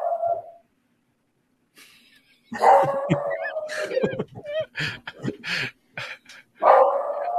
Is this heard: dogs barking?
yes